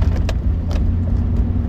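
Steady low rumble of a car driving beside a row of huge, abandoned airplane hangars, with a constant engine and road drone and a couple of brief higher clicks or rattles over it. No talking.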